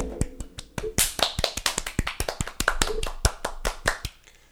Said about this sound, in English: Should we have a round of applause? Yeah, I wish... Oh, absolutely.